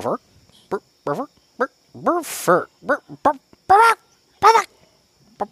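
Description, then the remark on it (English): A rooster clucks in a run of about a dozen short, loud, throaty calls, a few rising into raspy squawks, spaced irregularly with brief pauses between them. “The chicken came along with me tonight, so answer away.”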